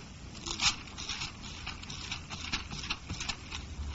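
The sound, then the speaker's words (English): Pages of a book are turned in a steady series of soft paper rustles and flicks, with one louder crinkle near the start and no talking, while turning to Galatians 5. “Still feels good turning pages, man.”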